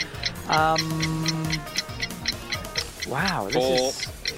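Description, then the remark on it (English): A quiz countdown clock ticks in a fast, steady rhythm throughout, clear, while voices make drawn-out sounds over the top of the ticking. “You can see who's in control of the clock there, can't you?”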